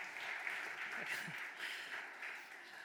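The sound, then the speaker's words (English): An audience applauds a speaker on a Sunday morning, a dense, steady wash of many hands clapping at an even, moderate level for the full few seconds, with faint murmurs of voices underneath. “I don't know why you'd want to clap for a math lecture on Sunday morning, but let's do it.”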